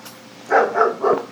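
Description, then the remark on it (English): A neighbour's dog barks three times in quick succession, the yaps clear, with no talking over them. “We have the neighbor's dog,”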